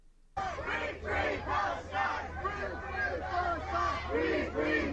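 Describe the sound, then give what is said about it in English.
A large street rally crowd demanding an end to the occupation chants in unison, voices rising and falling in a steady repeated rhythm of loud shouted phrases over a constant roar of many people. “Thousands of people made it to the rally in Washington, D.C. Tens of thousands take the streets.”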